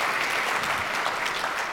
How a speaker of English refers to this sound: I appreciate you. I appreciate you. Give yourselves a hand. That's right. That's right.